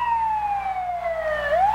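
A wailing ambulance siren passes, its pitch sliding slowly down and then starting to rise again, fairly loud over low road rumble with no one speaking.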